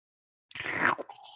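One wet slurp of hot tea after a brief silence, a noisy half-second sip followed by a faint trailing breath.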